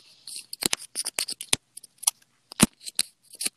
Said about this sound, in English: I'm cleaning up the dust. Yes. Dusty. ASMR again. Oh, I'm cleaning up dust when I'm allergic to dust.